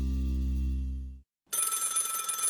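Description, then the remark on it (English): A low, buzzing tone cuts off into a brief silence, then an old-fashioned telephone bell bursts in, ringing loud and continuous with a rapid metallic clatter until the end. “Yeah, remember when all phones sounded like that?”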